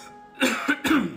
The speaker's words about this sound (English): Forgive me for I'm having a little moment of coughing here